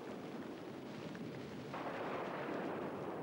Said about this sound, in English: Lightning and thunder are brought by a fearful being called Namarkun. He carries the lightning like an arc over his body and makes the thunder by striking stone axes against the clouds.